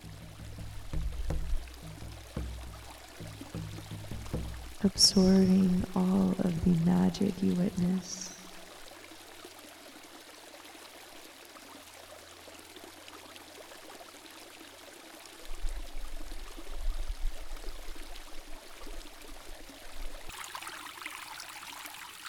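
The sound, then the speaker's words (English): Steady rain and water splashing at a waterfall wash continuously in the background, a soft hiss with occasional low rumbles, while a calm voice speaks briefly over it. “And as you listen to the sounds of the rain and the water splashing against the surface, the angelic sounds it creates here in this world.”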